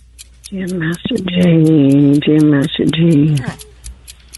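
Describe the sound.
A quiz countdown clock ticks steadily and quickly from start to finish, its crisp, evenly spaced ticks running beneath a voice that speaks loudly through most of the middle.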